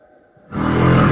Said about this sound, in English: And now the color has turned purple and the white noise has intensified. Does it get more significant as it goes on?